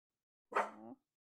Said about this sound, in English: Yeah, I was just gonna say we're about to have barking. Oh yeah, we are occasionally joined by Pancake, which is just delightful. Let's say that she's a Shiba Inu. She's not a person.